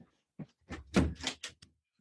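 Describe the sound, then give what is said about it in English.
A door swings shut with a dull thunk, followed by a quick series of clicks and rattles as the lock is turned, all within a couple of seconds and without any voices. “I just realised I didn't lock that door and my kid's going to come blasting in any minute because I can hear him.”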